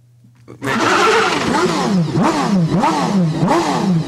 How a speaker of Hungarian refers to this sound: Végre van a motoros.